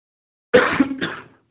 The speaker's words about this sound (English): I think we got a bit too much incense today. Still getting over a little bit of the cough.